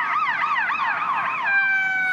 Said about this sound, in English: Everybody hold on. There's an ambulance driving by.